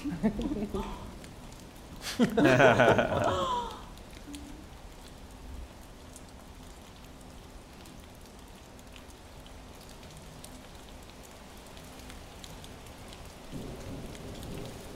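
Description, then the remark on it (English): Steady rain falls throughout, part of a virtual reality experience with haptic sleeves and a vibrating platform, with a low rumble of distant thunder rolling in near the end and a brief, louder burst of sound early on. “You can feel the rain?”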